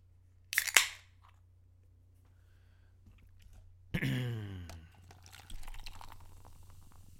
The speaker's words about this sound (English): Pouring it into a cup.